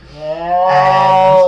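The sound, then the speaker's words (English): A cat yowls in one long, drawn-out wail that sounds pained, holding a fairly steady, strained pitch and swelling louder partway through, with no one speaking. “They hear that, and they're like, well, it sounds like the cat is, like, hurt, like, we should go check on it.”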